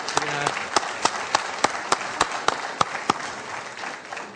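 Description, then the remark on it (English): An audience applauds to congratulate someone selected for Boys State, a dense wash of many hands with a few sharp, distinct claps standing out at a steady pace before tapering off. “I'm going to clap. You can clap on that one.”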